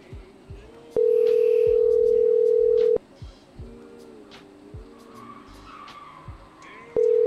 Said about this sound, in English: Holy fuck, someone racing cars outside.